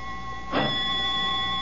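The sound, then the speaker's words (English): A doorbell rings in a steady, unbroken tone, a bright buzzy ring with high overtones that holds for the whole moment, briefly joined by a soft rushing burst partway through. “Only the doorbell.”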